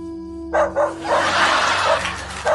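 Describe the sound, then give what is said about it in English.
The dog next door barks loudly in a quick run of sharp, repeated barks, preceded by a steady low tonal hum that cuts out as the barking begins. “What is that dog barking about?”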